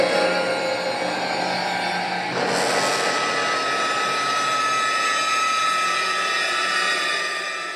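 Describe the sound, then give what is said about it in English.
Eerie sounds from a wooden Apprehension Engine, made by hitting its parts and used in a movie: a dense, continuous droning wash with steady humming tones, growing harsher and brighter about a third of the way through, then sustaining steadily. No one speaks. “Yeah, so all this is made with that Apprehension Engine that he created.”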